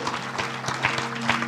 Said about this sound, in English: Come on, give him a hand clap of praise.